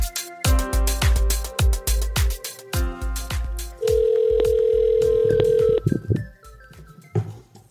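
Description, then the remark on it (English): A phone line rings out with one long, steady electronic tone lasting about two seconds as a call is placed to a guest, following a run of rhythmic, booming low thumps. No one speaks. “But time to get her on the phone.”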